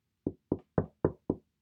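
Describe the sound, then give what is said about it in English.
Five sharp, evenly spaced taps of the bottom of a small glass bottle against a wooden bedroom door along a fifth-floor corridor, fairly loud, with short silences between each knock and no voices. “Using the bottom of the little bottle, I began tap, tap, tapping on the door.”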